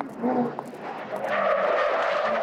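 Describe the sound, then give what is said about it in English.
A battered white car skids hard as it swerves at a woman walking down the street, its engine revving before the tires break into a loud, sustained screech that holds steady for a couple of seconds. “On June 21st, 1949, Roma was walking down the street when a battered white car tried to run her over.”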